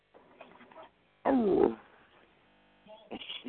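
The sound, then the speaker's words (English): A dog named Brown Dog makes a string of expressive vocalizations: low grumbling growls, a sudden louder whining howl in the middle, then more short whimpering moans. “Brown Dog wants to say hi, everybody.”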